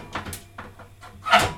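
Someone rummages through a kitchen drawer while baking a cake, reaching for a teaspoon measure stuck at the back of the drawer, with a few scattered clattering knocks and scrapes and a louder rattle of shifting items near the end.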